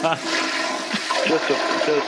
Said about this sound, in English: Was that a toilet flushing?